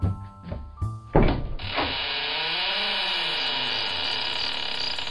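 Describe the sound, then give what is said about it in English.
A few dull wooden thumps, then a door swings open with a long, loud, wavering creak that groans up and down in pitch for several seconds, with no voices. “Hey, you gotta have this door fixed. That's enough to scare ya.”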